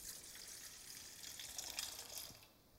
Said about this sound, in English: Most likely a servant brought it, right? I mean, that's what servants do. They fetch water. And he called for a basin. And that water brought before him into this basin.